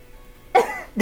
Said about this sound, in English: that was me gasping under my mask.